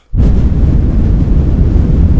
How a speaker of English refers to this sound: And if we turn the fan on, this is what you'd hear.